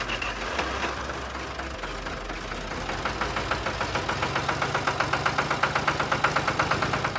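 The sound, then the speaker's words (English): A tractor engine idles steadily, its low drone settling into a rapid, even knocking rhythm that grows slightly louder partway through. The tractor was driven to school for an FFA drive-a-tractor-to-school day. No one speaks. “she's going to tell me about this sweet ride that she took in this tractor right here.”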